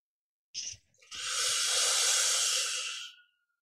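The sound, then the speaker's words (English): A short, sharp intake of breath is followed by a long, steady, breathy exhale that lasts a couple of seconds as part of a guided breathing exercise, then fades out. “Don't rush anything. Slow exhalation.”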